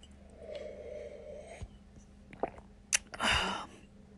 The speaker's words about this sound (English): Yeah, you get a variety of levels of the water and the mouth and the gurgling sounds. And here, let's try that again. Here, I'm at the end here. Yeah, that's a pretty good mic test, don't you think?